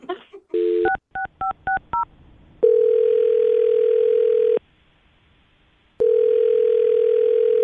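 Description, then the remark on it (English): A quick series of touch-tone beeps as a number is dialed, followed by two long, steady ringback tones separated by a pause of silence, heard clearly over a phone line. “Let's call this guy and find out what happened, okay?”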